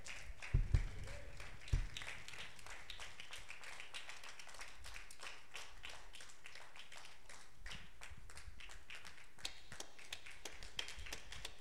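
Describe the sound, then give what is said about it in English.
A church audience applauds the day's guests. Many hands clap in a steady, dense patter for about twelve seconds at an even, fairly soft level, with a couple of heavier thumps near the start and no voices. “Can we get a round of applause for our guests today?”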